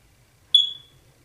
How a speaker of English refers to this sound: Yeah, the time to change your battery notification from your smoke alarm.